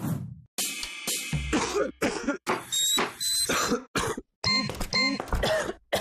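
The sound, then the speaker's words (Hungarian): A run of harsh, loud chesty coughs in quick bursts, with brief gaps between fits and some throat clearing mixed in. “Paxirazol tabletta, hogy te diktáld az ütemet, ne a hurutos köhögés.”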